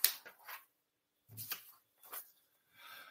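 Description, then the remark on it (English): Paper rustles and shuffles in several short, crinkly bursts separated by brief pauses as someone moves to the next sheet of paper, quiet with no one speaking. “Hold on. I'm getting to my next piece of paper.”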